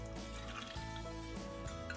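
Unsweetened almond milk, the first of two cups, pours steadily into a pot, a continuous liquid trickle and splash running for about two seconds over a low, even background hum.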